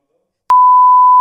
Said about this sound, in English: Can you say it over the camera? We can beep it. What's it called? Yeah, we can't be. Go on. What is it? I'll beep it out.